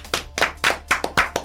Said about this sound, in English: So we clap it up one more time for